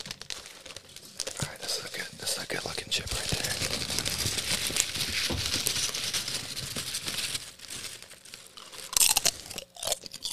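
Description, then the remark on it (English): Crunching of crisp food being chewed, loud and continuous with irregular bites and brittle cracks, a few sharper crunches near the end and faint breathy murmurs in between. “There's no better crunch.”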